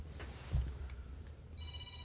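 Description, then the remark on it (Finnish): A telephone starts ringing partway through as Henrik Illikainen calls, a steady, bright electronic tone, clear over a low, muffled rumble, with no one talking. “Henrik soittaa.”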